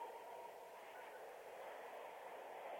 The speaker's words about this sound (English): It sounds like he's on a train. That does sound like Bart. As somebody who rides Bart every day, yeah, that does sound like Bart.